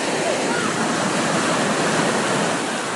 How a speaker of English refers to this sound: I'm going to start off with a little audio from the beach from a while ago. Can you hear where I am? I am at the beach right now, and kids are running around in the waves. It's so cute.